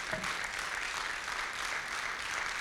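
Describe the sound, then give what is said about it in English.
An audience applauds steadily, giving the Lord a round of applause: a dense wash of many hands clapping at an even, sustained level with no pauses and no voices standing out. “And it was said, yeah, you can give the Lord a good round of applause.”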